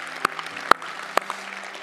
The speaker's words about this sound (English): Thanks for being here tonight. Yeah, you can clap again.